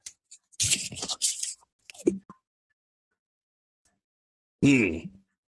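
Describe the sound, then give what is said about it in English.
A second of crinkly, rustling wrapper noise as a Jolly Rancher hard candy is unwrapped, a couple of small mouth clicks as the candy goes in, then silence before a short voiced groan. “Yeah, I'm just going to eat this one.”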